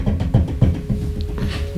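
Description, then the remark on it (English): Four dull, low knocks on a door in a steady, evenly spaced rhythm, each a short hollow thud, with a faint constant hum underneath and no voices. “Knock, knock, knock.”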